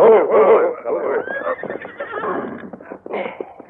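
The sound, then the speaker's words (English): Several horses whinny and snort as three riders rein up in front of the Derrick Ranch house, with a shrill neigh rising over shuffling hooves and a low murmur of voices underneath. “Soon, the three men reined up in front of the Derrick Ranch house.”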